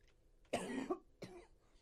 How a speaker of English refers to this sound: Please excuse me, folks, while I take a little bit of a cough here.